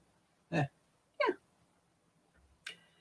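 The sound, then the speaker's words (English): A few short, throaty burps, each a quick loud gulp separated by brief silences, with no talking around them. “just burped, I believe.”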